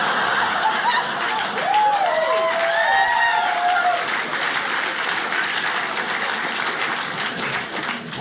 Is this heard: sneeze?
no